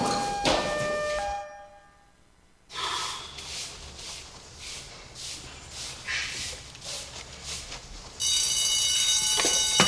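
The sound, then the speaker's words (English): A loud, steady alarm rings out near the end, a sustained buzzing tone. Before it come breathy huffs and rustling bursts, and a brief tonal sound is heard at the very start. “Wait, no. The alarm.”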